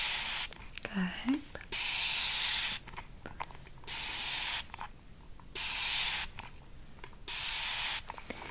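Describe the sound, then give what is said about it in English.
A spray bottle hisses out a fine mist of Fiji water onto a face in repeated bursts, about six short sprays with brief pauses between them, and a soft whispered word comes early on. “Now that you've got that fine mist of Fiji water all over your face, I can apply the cleanser.”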